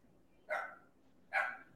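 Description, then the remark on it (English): A dog named Benny barks twice, two short sharp woofs spaced under a second apart, coming from somewhat in the background over a faint room hum. “I've got a little Benny barking in the background.”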